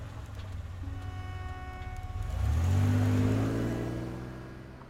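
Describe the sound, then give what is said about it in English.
A car engine idles with a low steady hum, then revs up and accelerates as the car pulls onto a main street, pitch climbing and growing louder before easing off as it drives away. No one speaks. “I nodded and buckled my seatbelt as she pulled onto the main street.”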